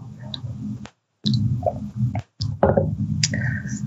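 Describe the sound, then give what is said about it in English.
A person drinks water during a Zoom talk: a few wet gulps and swallows with small clicks and sloshes, separated by brief silent pauses, no talking. “And I think that this is, I'm going to drink some water.”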